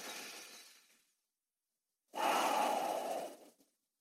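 Someone breathes deeply and audibly: a soft, airy breath trails off, a second of silence, then a stronger, steady rush of breath that cuts off abruptly. No one speaks.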